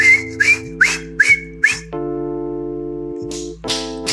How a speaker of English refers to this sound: It's kind of like the teapot. You know, it keep whistling.